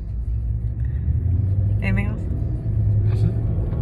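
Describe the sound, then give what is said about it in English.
Steady low road rumble inside a moving car, a constant droning hum throughout with a brief higher whine midway; fairly loud, with no clear talking over it. “We just turned our car ride into a podcast episode.”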